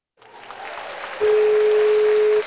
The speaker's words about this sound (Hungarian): és egy tapsot.